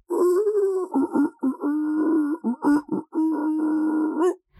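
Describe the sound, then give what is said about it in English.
Imitation elk bugles blare through a bullhorn as a crude tune, played by people on the road by a camp: loud, buzzy, distorted tones that rise and fall in several phrases separated by short gaps, ending in a brief squealing rise. “It was like a bullhorn playing elk bugle music, like what? Like a tune in elk bugles.”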